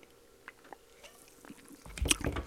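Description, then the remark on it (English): A few faint wet mouth clicks, then a brief slurping sip of beer in a hotel room, with a swallow near the end, fairly quiet overall, with no one talking. “I'm having a beer, guys.”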